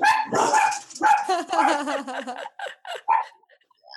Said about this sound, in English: I muted my microphone quickly enough because my dog started barking because my mailman came by.